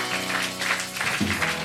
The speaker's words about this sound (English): Those clapping, God bless you.